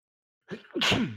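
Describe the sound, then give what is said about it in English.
A single sneeze with a short inhaled build-up, then a loud, breathy burst that trails off. No one speaks. “Bless you.”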